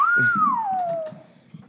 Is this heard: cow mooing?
no